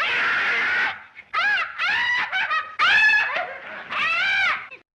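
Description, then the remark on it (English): A loud, anguished wailing scream from a movie comes in several drawn-out bursts, its pitch bending up and down; the first cry is harsh and raspy. It is alone, with no talking. “If I have to hear that scream, I will rip out my ears.”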